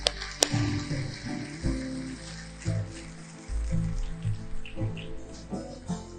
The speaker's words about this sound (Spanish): Dame un aplauso fuerte, Señor.